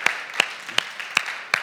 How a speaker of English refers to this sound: All right, yeah, we can clap for that.